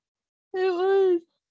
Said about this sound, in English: I'm yawning.